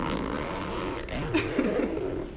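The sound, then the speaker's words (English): A bag zipper is pulled open to get a pen out of the bag, a quick, raspy burst that lasts about a second, over a steady low background hum. “Ooh, I love a zipper sound.”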